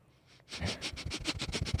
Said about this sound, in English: Sniff.